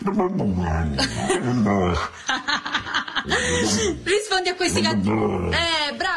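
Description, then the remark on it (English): A Siberian Husky barks and yowls in loud, pitch-sliding bursts that rise and fall like chatter, almost mimicking an Italian accent, with a brief snicker mixed in. “An Italian woman posted a TikTok of her Siberian Husky barking in what sounds like an Italian accent.”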